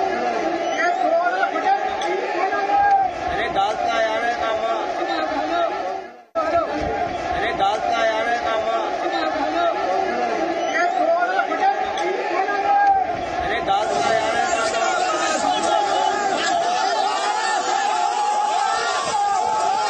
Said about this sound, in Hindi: ये लोग विरोध प्रदर्शन कर रहे थे और उनके हाथों में किसान संगठनों के झंडे थे। इनमें एक वीडियो में लोगों के हाथों में लाठी और डंडे भी नजर आ रहे हैं और ये लोग नारेबाजी भी कर रहे हैं, यानी इससे आपको ये पता चलेगा कि ये भीड़ बहुत उग्र थी।